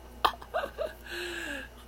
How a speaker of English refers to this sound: Naka-burp nang wala sa oras. You know, I just ate, chicken, fried chicken sponsored by my sis, thank you.